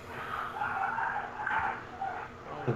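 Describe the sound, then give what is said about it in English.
The next-door neighbor's dogs bark and howl excitedly in a continuous, overlapping stream, sounding muffled, heard through open windows, with no talking over them. “We have our windows open and the next door neighbor's dogs are going nuts.”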